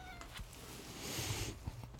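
A cat meows once in a drawn-out, slightly raspy cry lasting a second or two, fairly faint, with low rumbling background noise and no talking.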